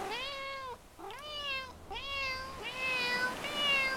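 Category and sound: animal, cat meowing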